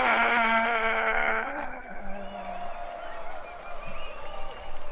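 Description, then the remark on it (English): A crowd cheers loudly, starting with a strong sustained shout that drops off after about a second and a half into steady crowd noise and applause. “And the crowd goes, "Yeah!"”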